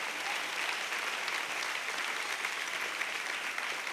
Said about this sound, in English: Somebody put your hands together and receive that right now.